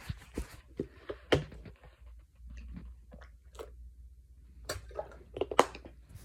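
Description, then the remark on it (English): Someone pauses during a recording to sip and swallow water: a string of soft, wet gulps and mouth clicks at an irregular pace, fairly quiet, with no talking. “So I'll stop for some water, and then I'll kind of get back to what I was saying about the thing that is kind of occurring.”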